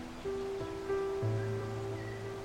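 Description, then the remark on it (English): A steady, continuous rush of falling water from a waterfall, soft and even, with sustained musical drone tones layered over it and no one speaking. “As you listen to the sound of the birds in the canopy and the sound of that beautiful waterfall”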